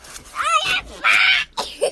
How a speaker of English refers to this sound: Guys, this is what happens when the dog decides to squirm her way and squeeze her way into our little tiny studio space in the closet.